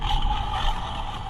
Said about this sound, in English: Picked up a sound effects Star Wars book, as you can hear. Little force lightning, little wampa. Wampa, you want to hear the wampa?